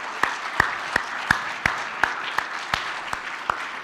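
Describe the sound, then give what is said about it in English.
An audience at a morning service applauds steadily to honor veterans, a wash of many hands clapping with one clapper standing out in sharp, evenly spaced claps. No one speaks. “So if you could, before you applaud, I know y'all want to, but if there's anyone here who is a veteran, would you stand?”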